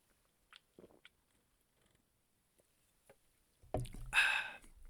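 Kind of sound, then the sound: food or drink, sipping a cold beer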